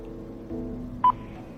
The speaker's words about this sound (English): It's just a beep and the transcription says hello.